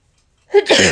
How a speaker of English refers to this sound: Ooh, I got a sneeze.